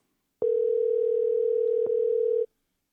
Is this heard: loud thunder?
no